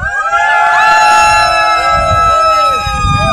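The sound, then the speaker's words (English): Two people cheer and whoop at a Parkrun Adventurers listener meetup at Chell Harbour on a Saturday morning. Overlapping voices give loud rising and falling cries that carry on steadily for a few seconds and sound like a bigger crowd. “And thank you to those two people who just made that crowd sound like there was a lot more of you.”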